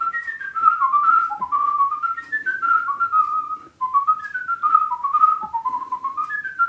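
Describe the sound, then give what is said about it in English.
Someone whistles a bright, bouncy tune, quick notes tumbling in a steady rhythm with short breaths between phrases: a triple-tongued cornet solo polka, the first tune whistled in a whistling contest. “the first one was a cornet solo, triple tongue in polka called Trumpet Triplets”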